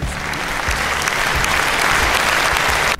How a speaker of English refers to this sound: Atlanta, y'all deserve a round of applause, okay? So go ahead, Atlanta.